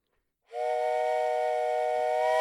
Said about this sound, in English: Is there a train approaching?